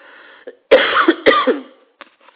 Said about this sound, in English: And as we're moving into that, I'm going to cough. I'm sorry, it's allergy season for me.